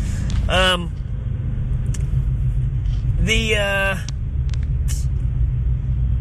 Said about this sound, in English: Holy moly, a big semi-truck just pulled out in front of this other truck. That's fun.